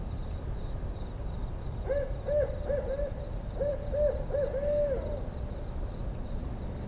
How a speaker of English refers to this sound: I decided to do a little investigation on YouTube and found out that it was a barred owl